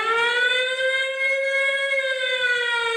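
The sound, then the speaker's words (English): A loud, steady siren wails continuously, its rich harmonic tone rising slightly and then gently falling, with no talking over it. “Yeah, I had to put on the siren because of your bullshit, and I had to monster business you out of this shit.”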